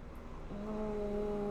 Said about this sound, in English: Oh, there's a helicopter.